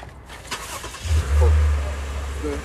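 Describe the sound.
An old car engine cranks and catches, then revs up into a loud, rumbling roar before settling into a steady low idle, with faint voices in the background.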